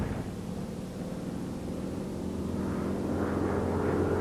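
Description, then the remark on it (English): A racing plane's engine roars steadily with a deep droning hum, swelling slightly louder toward the end, with no voices present; racing pilot Lowell Bales flying it in 1931 to challenge the land-plane speed record. “In 1931, Lowell Bales, a racing pilot, took one to challenge the speed record for land planes held by the French at 278 miles an hour.”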